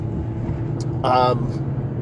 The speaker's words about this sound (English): And now we're approaching a bit of traffic here, ladies and gentlemen, but you know, that just prolongs the banter on my morning drive.